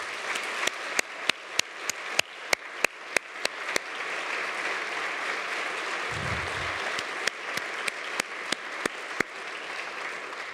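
An audience applauds steadily for about ten seconds to thank a seminarian. A dense wash of clapping, with a few sharp individual claps standing out in a quick, uneven rhythm. No one speaks over it.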